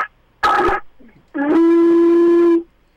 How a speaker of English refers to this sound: Quiet conch shell blowing. She's blowing a conch shell.